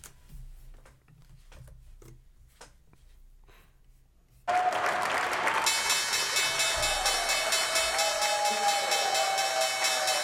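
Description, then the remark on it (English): Scattered claps and murmurs give way to a loud, sustained ringing of the New York Stock Exchange closing bell, ending the trading day, its clanging tone continuing steadily over a roar of applause and cheering until the end. “And there you have it, the closing bell of the New York Stock Exchange, ending another trading day.”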